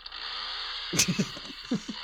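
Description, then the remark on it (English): A horse neighing sound effect: a sharp burst followed by a quick series of wavering, pulsing whinny calls lasting about a second, over a constant background hiss. “that is a horse neighing right there.”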